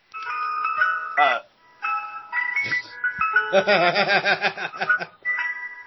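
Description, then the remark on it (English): A tinkling ice cream truck jingle, growing louder, plays a bright electronic melody of steady tones. Partway through, wobbly laughter-like sounds overlap the tune before the melody carries on alone. “That's what you hear getting louder. Is that I look for the ice cream man.”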